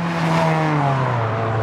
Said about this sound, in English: As we're chatting, the car goes racing by on Pierce Road.